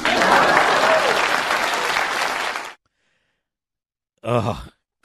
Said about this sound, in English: You could just hear the audience cringe when he said that. I mean, it's pitiful when you have to tell the audience to clap.